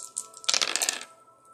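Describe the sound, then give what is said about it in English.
A quick burst of hard, clattering rattles as dice are rolled, tumbling and knocking against a surface for about half a second, fairly crisp, then settling into quiet. “Let's roll the dice and find out the truth.”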